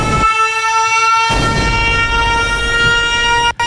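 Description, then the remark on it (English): A loud, steady siren blare from a Dollar Tree sound bite toy, with a buzzy, harmonic-rich tone that holds for several seconds, its texture changing partway through before it cuts off abruptly. “He wants his sirens.”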